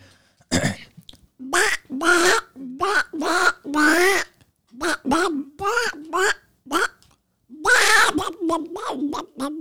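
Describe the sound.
A person imitates a duck with a long run of nasal, raspy quacks in quick, uneven bursts, loud, with short pauses between calls and no other talking.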